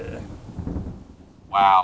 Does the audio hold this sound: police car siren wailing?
no